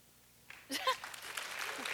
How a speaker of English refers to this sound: Applaud, okay.